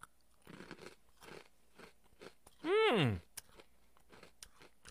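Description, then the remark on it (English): Chewing of crunchy Kalpitz granola, a steady run of crisp crunches with a loud, wavering hum of a voice breaking in briefly near the middle. “Not as crunchy than what I thought it was going to be, but I think that's a good thing.”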